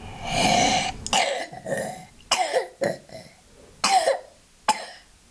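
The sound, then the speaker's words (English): A child coughs repeatedly in a series of rough, wet bursts, starting with a long raspy fit and followed by several shorter sharp coughs, with no talking. “You got a bit of a cough there, bud.”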